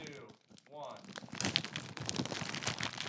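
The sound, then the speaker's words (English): Loud crinkling and tearing of several snack bags (Canadian Utz, rice crackers, pizza and poutine chips) being ripped open as a foley test, a dense rustle lasting a couple of seconds, with a voice briefly heard at the start. “All right, should we do a foley of opening?”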